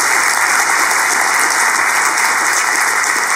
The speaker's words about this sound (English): Okay, give them a round of applause as they come up.